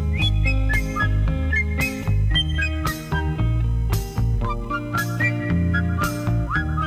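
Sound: person whistling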